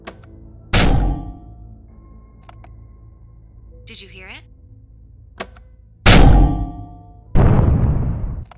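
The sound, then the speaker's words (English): A Mark 54 LHT torpedo strikes a vessel's hull twice with heavy metallic thuds, the first leaving a faint ringing ping of contact, then a loud explosion shockwave roars and fades. A voice speaks briefly between the impacts. “That is the sound of a Mark 54 LHT torpedo making contact with the hull of a vessel.”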